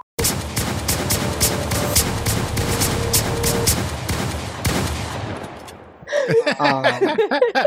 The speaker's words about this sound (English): insert a gunshot. Insert like a very hood like Detroit Trill sort of gunshot 808.